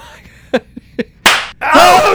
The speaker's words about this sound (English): Dad, slap him in the face. See if something fucking comes back.